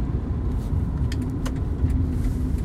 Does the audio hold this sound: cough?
no